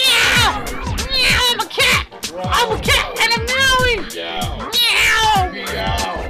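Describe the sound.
A human voice mimics a cat with a string of loud, drawn-out, wavering meows, continuous, several yowling calls run together with barely a pause between them.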